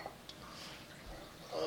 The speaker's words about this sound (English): I'm pouring my wine into the wrong glass.